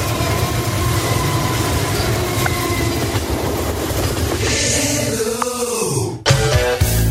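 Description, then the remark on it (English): A loud, steady rumble of a passing train with rhythmic rolling clatter, a rising whistle-like tone near the end, then a sharp burst of squealing and clanking metal; a railroad sound effect used by radio station WOWQ-FM, 105.1 The Train, of Waverly, Tennessee. “The station calls themselves The Train, with lots of railroad sound effects”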